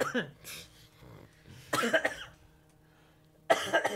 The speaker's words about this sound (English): Dude, it's just this awful cough. It's all drainage. You've had it for a week?